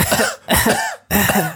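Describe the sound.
A voice imitates a coughing fit: three harsh, raspy coughs in quick succession, loud, separated by brief gaps.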